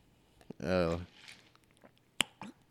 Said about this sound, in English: Let me take a sip.